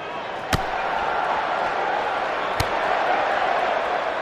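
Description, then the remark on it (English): Two sharp, heavy thuds land about two seconds apart, like a body hitting a wrestling mat, as Keith Lee knocks Kurt Angle down with a huge clothesline, over a steady roar of arena crowd noise. “Oh, Keith Lee with a huge clothesline. Knocks Kurt Angle down.”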